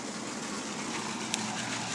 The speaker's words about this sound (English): Oh yeah, here's a little waterfall.